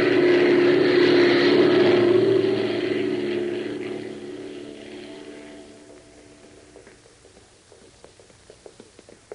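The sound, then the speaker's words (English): A loud propeller airplane engine drones steadily, then gradually winds down and fades as the plane comes in to land on a camouflaged landing strip, leaving faint clicks and rattles at the end. “That's the landing strip. They're peeling off the camouflage. Watch it. We're going in.”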